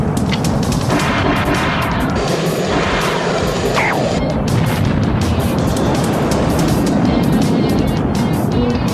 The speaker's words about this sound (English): she shoots those three missiles from Manta's hood, and they narrowly miss Thunderhawk